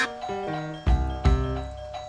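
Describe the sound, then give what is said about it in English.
A doorbell chimes a short melodic ding-dong, with two bright struck notes ringing out and lingering, clear, with no one speaking. “Thank you, doorbell.”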